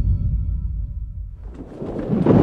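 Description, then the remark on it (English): Deep rumbling thunder of a Category 5 hurricane rolls through a stormy soundscape, then a burst of wind and rain-like noise swells loudly near the end. No one speaks. “And then they hit a mother of a storm, a Category 5 hurricane.”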